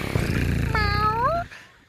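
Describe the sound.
A voice imitates a cat with one drawn-out, wavering meow that rises and then trails off. It is loud, sounding alone over a low background murmur.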